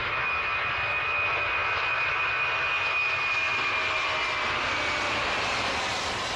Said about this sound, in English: That is one of my favorite sounds anywhere, because I love airplanes, as you will find out if you don't know me already.